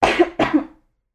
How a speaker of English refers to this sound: I just, like, coughed up phlegm. Am I sick?